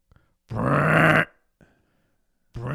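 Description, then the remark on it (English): A person imitates a man snoring, making one loud, rasping snort that lasts under a second, then a faint breath. A second snore begins at the very end. “That's him snoring on the couch.”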